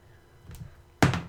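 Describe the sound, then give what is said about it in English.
Dice are rolled: a soft knock, then a sharp clattering thunk as they land, with a couple of quick bounces rattling briefly before settling. No one talks. “All right, let's roll the dice.”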